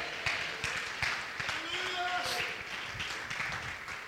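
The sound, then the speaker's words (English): A crowd stands and claps hands in a dense, steady patter filling the whole stretch, with voices calling out and shouting over the clapping, answering a call to stand, clap and shout "it is finished". “Let's stand our feet and clap our hands and shout, it is finished.”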